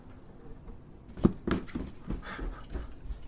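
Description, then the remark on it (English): A quiet series of soft footsteps thud across a floor, about half a dozen steps in an uneven walking rhythm, with no voices, fairly faint. “You could see like a shadow go across the floor too with the footsteps.”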